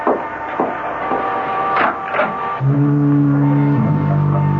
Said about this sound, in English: The weather's changing. I can scarcely see the beam of the lighthouse. It's getting all misty. And don't be frightened if you hear the foghorn.